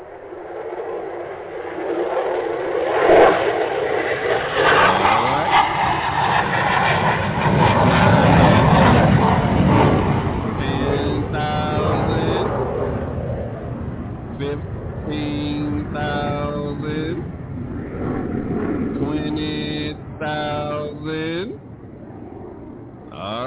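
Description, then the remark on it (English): A loud, steady roar like a jet engine of an airplane taking off builds for about ten seconds, then fades to a lower rumble as it climbs, while a voice takes over in bursts on top. “Okay, let me get this big-eyed bird on up off the ground.”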